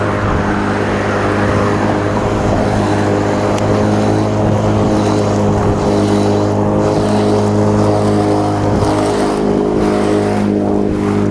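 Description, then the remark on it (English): A car drives past, its engine humming with a steady, droning tone and strong low rumble, holding fairly constant throughout without clearly fading in or out; no one speaks. “That was my car for a second. Could have been. My daughter driving.”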